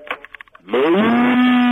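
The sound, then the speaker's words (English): After a few short, choppy bursts, a caller on a radio phone-in line breaks into a loud, sustained imitation of a cow's moo, rising at first and then holding a steady, droning pitch to the end. “Oh, we've had a moo.”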